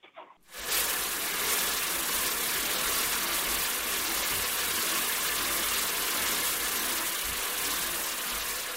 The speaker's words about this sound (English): And then another bingo drum type crank underneath it was a rain machine, which is this literally is a bingo drum, like with the wire cage and everything. And it's filled with little rocks.